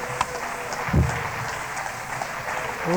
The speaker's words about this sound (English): Let's give the Lord a hand clap of praise, shall we? Praise God, praise God, praise God.